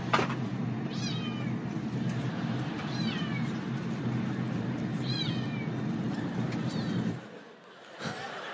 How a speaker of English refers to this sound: Some woman had brought her new cat on the plane, and she was just a few rows behind me. For 3.5 hours, I heard a cat meow.